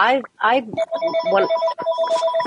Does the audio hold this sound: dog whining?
no